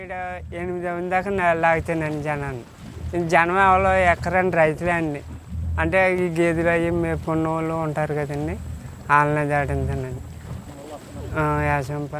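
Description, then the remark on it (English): A boat churns steadily through canal water on its way to farms in the area, a low continuous rumble running underneath, while a man talks loudly and almost without pause over the top. “took his boat to wind through canals and reach a few farms in the area.”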